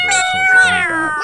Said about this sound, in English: You're gonna put a bleep in. That's right. I'm just making extra work for you. Yeah. I think we should have cat noises instead of beeps.